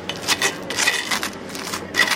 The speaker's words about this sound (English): So we're just spreading the toast. Oh, the butter is hitting that highly baked bread. And you've actually cut it right across. That's what you've done. Not diagonal, so I'm going to just take a bit here. This is our seeded sliced sourdough